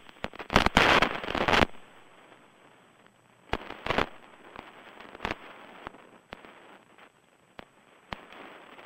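Thunder from a lightning storm cracks: a loud, harsh crackling burst lasting about a second, then a few sharper snaps and fainter scattered crackles over a low, steady hiss, with no talking.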